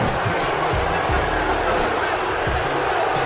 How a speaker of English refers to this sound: Dude, they're booing the fuck out of him.